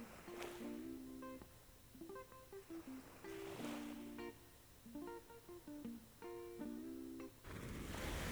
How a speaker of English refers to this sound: Now you're all alone here, with the peaceful sound of the waves lapping against the shore.